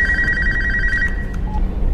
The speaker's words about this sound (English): And then all of a sudden the like phone rings and he just turns around and goes,